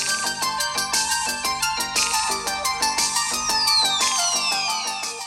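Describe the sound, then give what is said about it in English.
Music plays loudly through the main speaker at the bottom of a Google Pixel 6 Pro smartphone at full volume, a bright, steady melodic track with quick rhythmic notes and rising sweeps, thin but fairly full, no talking over it. “Google's main speaker at the bottom of the Pixel 6 Pro is terrific, loud and with relatively decent bass”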